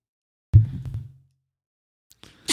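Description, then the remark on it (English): A single abrupt sneeze bursts out, with a heavy low thump that fades within about half a second, followed by quiet and some faint rustling at the end. “Bless you.”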